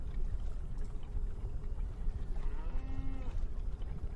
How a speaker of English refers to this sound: Yeah, I just wanted to trigger some cow noises as you're getting a sample.